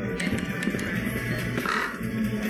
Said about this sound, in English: See, now that's funny. The harbinger of death. There's a bird in the store.